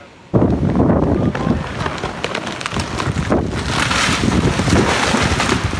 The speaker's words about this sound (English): We're here on 12th Avenue between St. George's and Fraser, you know, the narrow part of 12th Avenue where the giant trees are. They were no match for the strong wind gusts this afternoon.